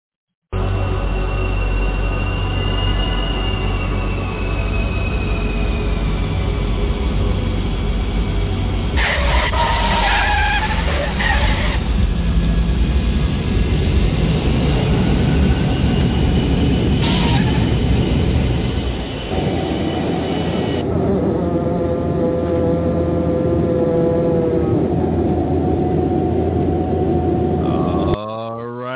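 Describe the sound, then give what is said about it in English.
An airplane landing: a loud, steady roar of engines with whining tones and heavy rumble, shifting partway through as the aircraft touches down and rolls along, lasting about half a minute. “Got this airplane safely on the ground.”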